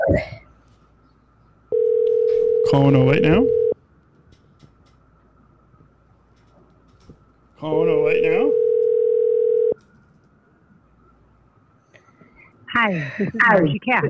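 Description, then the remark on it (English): A phone line rings out with two steady, mid-pitched ringback tones, each lasting about two seconds with a long pause between them. A voice then begins speaking at the end. “I'm calling her right now.”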